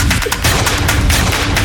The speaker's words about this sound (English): Give me the claps again. Clap, clap, clap, clap, clap, clap, clap, clap, clap, clap, clap, clap, clap. Yeah, boy.